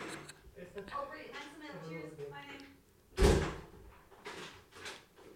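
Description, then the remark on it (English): A firm, loud knock on a door cuts in sharply after people talking, followed by a quieter thump a moment later as voices continue. “That's a firm rap on the door now we experience there.”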